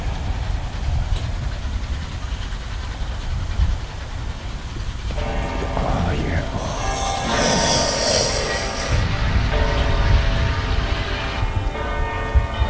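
A train rumbles steadily along the tracks with a loud, continuous low roar, and partway through a drawn-out horn blares over the noise and keeps sounding to the end.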